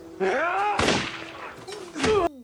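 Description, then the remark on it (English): A loud, sharp gunshot cracks out partway through a tense film scene, followed by a second gunshot as two characters shoot each other, with raised voices heard around the shots. “There's another gunshot, and so the first one is, I think, Alvaro getting shot, and the second one is Manuel getting shot, mm-hmm.”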